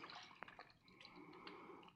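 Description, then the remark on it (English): Water splashes and drips as someone bathes their eyes with cool water, with scattered bright droplet plinks over a soft continuous trickle, like hands scooping water from a basin. “Oh, the water feels so cool, so refreshing on my eyes.”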